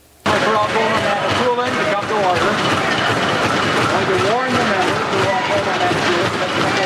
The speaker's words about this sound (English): Now, after the show yesterday, we saw the NDP opposition ejected from the legislature and unable to vote after thumping their desks in protest.